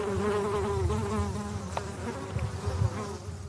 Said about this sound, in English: Standing in the middle of this field, the bees busily going from one purple flower to another, you'd think you were in Provence. The regular rows of lavender plants follow the gentle downslope of the field.